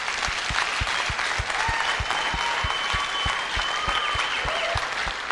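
An audience claps together in a steady, quick rhythm, the sharp claps falling in even beats over a dense wash of crowd noise, with faint whoops and voices rising above it.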